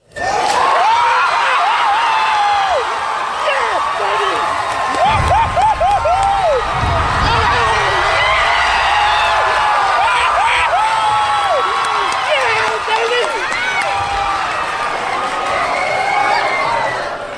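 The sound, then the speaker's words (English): A large theater audience cheers and whoops loudly and continuously, with overlapping shouts, high-pitched yelps and scattered laughter, reacting to Legolas getting onto a horse in a Lord of the Rings film. “I want to play just a sample of the crowd reaction I witnessed to Legolas getting on the horse like that.”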